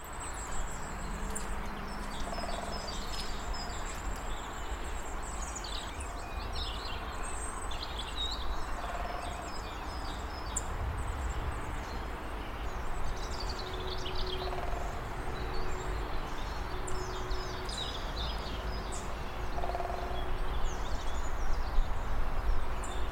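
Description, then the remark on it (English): A woodpecker drums on a tree several times, recorded outdoors while walking a dog, each short resonant roll spaced a few seconds apart, set against a steady chorus of birdsong and outdoor background hum. “It's exactly like someone like twanging a ruler on the end of the desk.”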